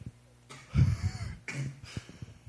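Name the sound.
coughing fit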